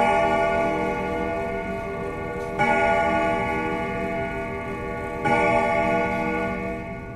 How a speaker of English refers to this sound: And then you hear a grandfather clock in the other room that strikes at noon.